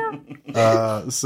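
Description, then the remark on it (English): A person's voice imitates a little stray cat's meow, one drawn-out, nasal mew with a rising and falling pitch, framed by brief soft vocal sounds before and after. “Yeah, there's just a little stray cat.”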